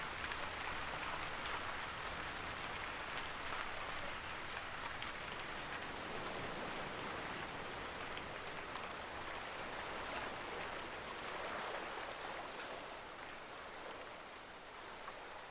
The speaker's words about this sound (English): I felt like I was really synergizing with like nature and like the weather and the sky and the clouds. Like I felt like I was almost being blessed by rain, I guess.